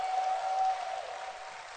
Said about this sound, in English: But by the obedience of one man called Bishop Doug Hayward Mills, you and I are seated in church. I thought you would clap louder for that one.